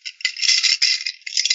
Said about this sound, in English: That's me shuffling the chips.